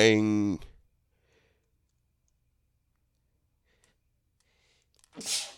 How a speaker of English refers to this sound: Y'all just heard me sneeze. Ugh, my bad. I should probably cut that up.